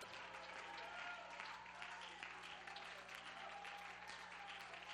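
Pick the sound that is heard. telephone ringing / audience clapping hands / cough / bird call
audience clapping hands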